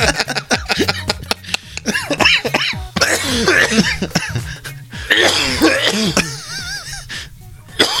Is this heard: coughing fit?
yes